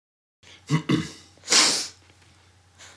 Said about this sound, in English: Synchro sniffing. Jinx sniff. And that was the very rare, rarely seen, rarely heard synchronised sniff.